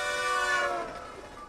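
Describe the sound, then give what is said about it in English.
A train horn blares loudly as it passes, its steady tone dropping noticeably in pitch midway through as the train moves away, then fading slightly. No voices. “So much in the same way that the sound of, say, a train moving toward you and the sound of a train after it's passed you moving away differ in pitch, kind of like this.”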